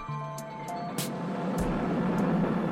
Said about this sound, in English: Down the only complete Georgian street, Marshall Street, comes the intense traffic down to the harbour quaysides.